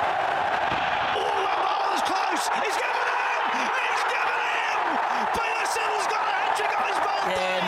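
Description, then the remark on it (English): A large crowd roars and cheers for cricketer Peter Siddle in a steady, dense wash of noise for several seconds, with scattered individual shouts and voices rising out of the din. “Here we go. Crowd cheers.”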